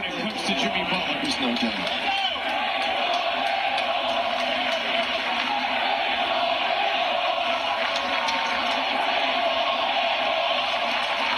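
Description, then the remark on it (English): A large arena crowd of Minnesota fans roars and chants "Rachel Nichols" to taunt Jimmy Butler of the Heat, a loud, steady wall of massed voices that barely dips for the whole stretch, with a few sharper shouts standing out near the start. “See if you can pick up what the crowd in Minnesota was doing to haze Jimmy Butler.”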